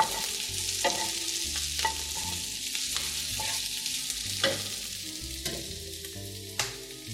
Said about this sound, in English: My onions are still sizzling, and I'm gonna transfer them into the bottom of my baking sheets, and that ends the symphony.